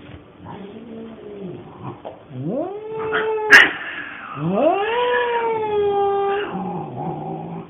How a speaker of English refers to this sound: a little snippet that I recorded just for the podcast of the first night introducing the two cats into their home and some of the noises that we put up with.